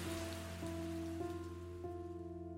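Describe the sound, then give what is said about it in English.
A gentle shower of soft, steady rain patters continuously over a forest, mixed with sustained musical tones that shift every half second or so. No one speaks. “Gathering all of his courage, Clumsy let out a gentle shower. To his delight, the forest soaked up the rain, and the animals danced joyfully in the puddles.”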